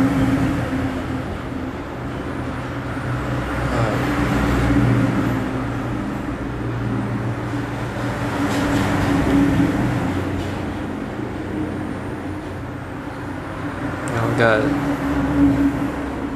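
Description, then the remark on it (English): A truck rumbles past outside at around 4 a.m.: a low, steady engine drone that swells and eases several times, with faint muffled voices underneath. “Oh, there's a truck.”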